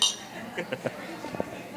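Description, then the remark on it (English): Drinking glasses clink together in a toast, with about four or five quick, light taps spread irregularly over a second, above a faint murmur of background voices. “Let's clink some glasses.”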